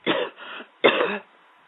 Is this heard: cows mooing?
no